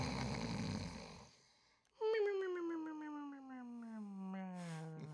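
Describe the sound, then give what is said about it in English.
A cartoonish snore effect: a raspy, rumbling inhale, a brief pause, then a long whistling exhale that slowly slides downward in pitch. Loud, with no talking. “Cue the snores.”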